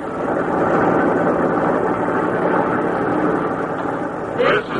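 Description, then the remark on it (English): A heavy truck engine rumbles steadily, a broad continuous drone with a brief squeal near the end, like the truck shifting gear or braking. “The truck drivers hear the grinding of brake, the shifting of gear, song of the wheels and the well-traveled grooves.”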